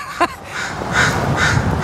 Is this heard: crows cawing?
yes